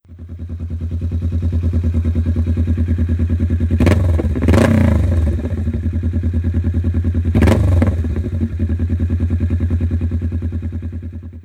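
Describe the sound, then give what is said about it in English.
A motorcycle with an aftermarket exhaust idles with a deep, loud, steady rumble, broken by two sharp throttle blips that bark and crackle before settling back to the throbbing idle. “So if this sound is your thing, maybe look into this one.”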